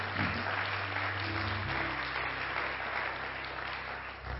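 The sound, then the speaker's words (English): The home folks in an audience applaud their guests with sustained, dense hand clapping to welcome them, a steady wash of many hands clapping at once with a low hum underneath, holding fairly even throughout. “And why don't all the home folks give our guests a good hand clap?”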